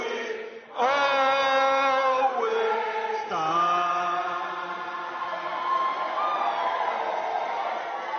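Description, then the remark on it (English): Ugandan lawmakers in parliament sing loudly together, cheering and applauding at the passing of an anti-LGBT bill, in sustained, held notes whose pitch shifts every few seconds, with cheering voices mixed in. The sound starts abruptly after a brief dip and stays strong throughout. “I'm going to play this cut one of said cheering and applause and singing.”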